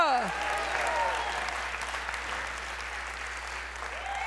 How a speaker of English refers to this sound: Somebody ought to give him a hand clap because he's God in our life.